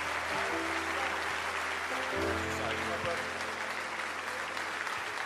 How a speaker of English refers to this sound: Would you put your hands together today and welcome